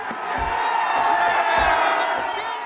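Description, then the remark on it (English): A large crowd in the capital of Ukraine roars and cheers continuously as a crane pulls down a statue of Vladimir Lenin, a little more than 11 feet tall, on a boulevard; a dense wall of shouting and whooping voices at steady high volume, with a few low thuds scattered underneath. “And as it topples to the ground, the crowd goes wild.”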